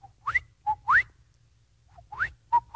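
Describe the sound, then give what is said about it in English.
A person whistles an imitation of a bobwhite quail call twice: a short low note followed by a sharp rising whistle, repeated after a pause, clear with faint low background rumble. “I don't know if it's a local bird to the Bay Area or not, but the bobwhite sounds a little bit like this.”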